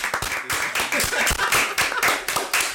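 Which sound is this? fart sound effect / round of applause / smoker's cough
round of applause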